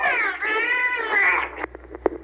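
A dolphin vocalizes in imitation of a girl's "hello," a loud two-part warbling call with bright rising and falling harmonics, then a scatter of short sharp clicks.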